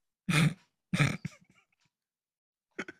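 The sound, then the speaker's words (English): A person voices two loud, harsh coughs in quick succession, then a few small throaty sounds and one shorter cough a moment later. It is a hard coughing fit imitated by voice for a character who gasps and rolls over onto her stomach. “She gasps, taking a deep breath, rolls over to her stomach, and just, she coughs real hard, and then just kind of looks up at you people.”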